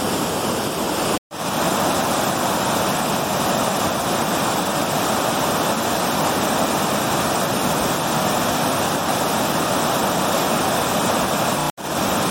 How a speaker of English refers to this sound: And as the water goes down, it boils and it's still cascading down. It's not a waterfall as such, but it's still got a long way to drop. Just an amazing sight.